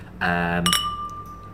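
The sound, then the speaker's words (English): A single bright clink of tulip-stem beer glasses touching on Valentine's Eve, its clear ringing tone lingering and fading over about a second, preceded by a brief humming, tonal sound. “It sounded like a Valentine's-y sort of clink of... Prosecco. Of champagne glasses, or in this case, world beer...”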